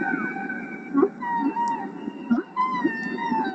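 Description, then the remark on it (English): Whale song: long, eerie tonal moans with rich overtones that rise and fall slowly, layered with deeper grunting pulses, all continuous and fairly loud with no talking. “And it instantly seemed just dead obvious that here, finally, was something that could get enough of the attention of the world and make it possible to get people concerned about whales.”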